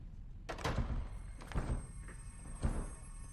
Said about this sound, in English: you broke the door.